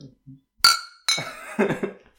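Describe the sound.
Glasses of a mid-strength, fruity drink clink together in a toast among a group of men: a bright, ringing chime, then a second clink close behind, each tone lingering briefly while voices murmur quietly around them.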